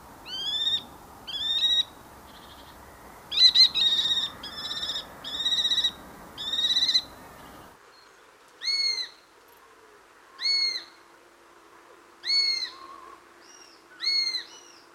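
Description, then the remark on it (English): Shrill, high-pitched calls of kestrels and sparrowhawks repeat in short screeching bursts, about a dozen in all, first over a low rumbling background, then ringing out more clearly against near silence. “Let's listen to kestrels and sparrowhawks.”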